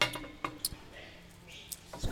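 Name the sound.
glasses clinking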